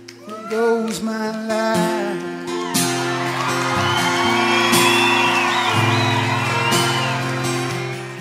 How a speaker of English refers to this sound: And that spontaneous applause from the audience showing their appreciation to the writer, and the writer in the end sharing his life with complete strangers.